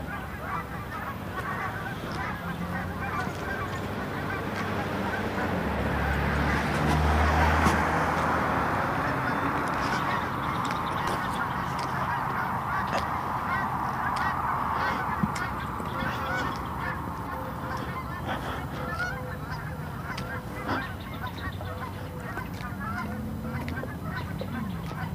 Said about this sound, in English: Bunch of disorganized geese coming overhead. Coming in from the northeast.